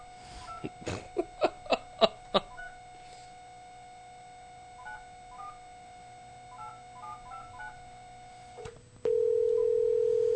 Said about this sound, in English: See if they pick up the phone.